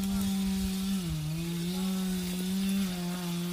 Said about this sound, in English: Is it chainsaws? Is it handsaws? In some areas where it's sort of, it's not that steep, they use chainsaws.